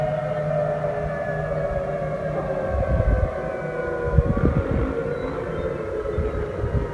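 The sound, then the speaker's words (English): A tsunami warning siren in Alaska, sounding after a magnitude 7.8 earthquake, sounds continuously, its steady layered tones holding level throughout, with bursts of low rumbling noise partway through. No one speaks. “Now, when it was going on, now, obviously, the tsunami warning has been canceled for those of you that have family members in Alaska. But they were warning people.”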